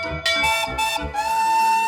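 A big blue fire engine with two water cannons sounds a steady, high whistle continuously while its bell clangs several times in quick succession near the start, loud with no voices.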